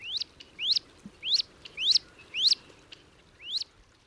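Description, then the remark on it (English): Wood duck ducklings, a brood of about a dozen crossing a pond with their mother, peep in a steady series of six high, rising calls spaced about half a second apart, clear over a quiet outdoor background. “It's a good bet that the mother duck has at least one, and maybe more, foster ducklings in tow.”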